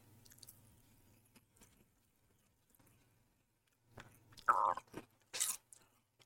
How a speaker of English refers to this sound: I'm not sure if my chewing is coming through on the show, but as you can tell, new listeners and viewers, very professional right here.